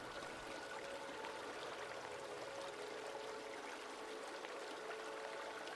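A steady, unbroken rush of flowing river water, soft and even throughout, with no voices and no distinct events standing out from the continuous wash.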